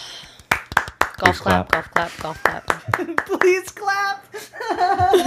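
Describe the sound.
A light, scattered round of golf claps in a Zoom meeting, celebrating Zoom lifting its 40-minute time limit, a dozen or so sharp hand claps at an uneven pace, with voices chattering and calling out over and after them.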